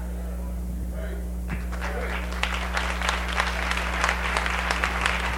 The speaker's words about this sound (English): Oh, the hand claps.